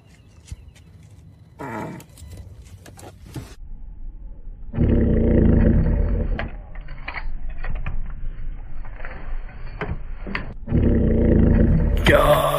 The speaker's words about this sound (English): Let me know what you think about this fart, okay? So wait, whose fart is it again?